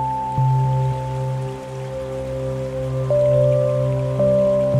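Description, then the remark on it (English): Steady rain pattering continuously, a dense even hiss of drops, with a sustained low droning tone running beneath it throughout. No one speaks. “The rain patters on the new leaves of summer.”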